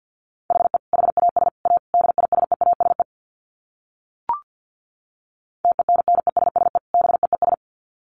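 Rapid Morse code at about 50 words per minute: a single steady mid-pitched tone keyed in fast dots and dashes, two bursts separated by a pause broken by one brief blip.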